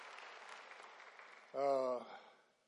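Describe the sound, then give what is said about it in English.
A church audience applauds itself with a dense, steady clatter of clapping, then a brief loud voiced cry rises over it for half a second before the clapping fades away. “You give yourself a hand clap.”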